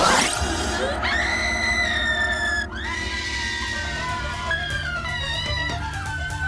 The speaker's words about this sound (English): And that's when the corpse is revealed. They scream for way too long at each other.